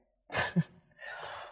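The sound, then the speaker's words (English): A single harsh, nasty cough bursts out, followed by a breathy, raspy intake of air. No one speaks. “Still have my nasty cough.”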